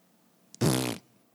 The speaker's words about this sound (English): And he farts, and it ends.